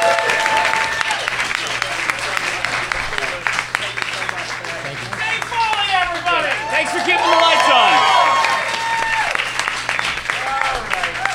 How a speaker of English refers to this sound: Dave Foley, everybody. Give him a giant round of applause.